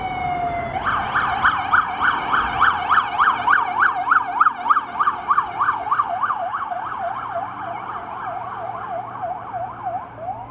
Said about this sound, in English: I think those sirens might be coming this way. If we're lucky. Yeah, do you guys want some siren sound effects and some traffic sound effects? Is that cool with you guys?